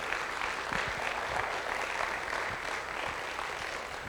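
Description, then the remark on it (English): A room full of people claps steadily and densely for several seconds, giving the Lord a round of applause, a sustained wash of applause with no speech over it. “Come on, if this is good and you're receiving it, give the Lord a good round of applause.”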